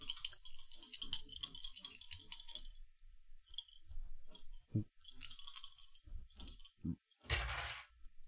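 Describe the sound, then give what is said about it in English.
Three dice, two light and one dark, rattle steadily for a few seconds, then clatter in several shorter bursts, ending with one sharper, louder tumble. The clicking is bright and hard, with no voices. “So I have two light dice and a dark die.”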